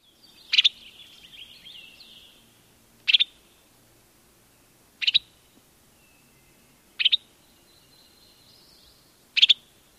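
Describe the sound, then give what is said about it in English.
A Western Tanager gives five sharp, chuckling calls, each a quick burst of two or three clipped notes, spaced a couple of seconds apart, with faint thin birdsong twittering in the background. “The Western Tanager call is a sharp 2-3 note chuckling.”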